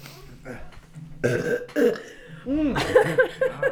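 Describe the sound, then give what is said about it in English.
A loud burp, drawn out and croaky, breaking off briefly before a second long, rumbling belch rolls on for another second or so. “Yeah, I can burp on command, so.”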